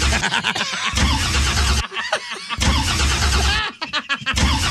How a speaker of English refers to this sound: it just sounds like you're starting a car over and over again.